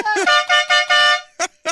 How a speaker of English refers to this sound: It's like a train horn.